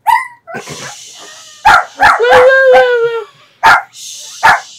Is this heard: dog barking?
yes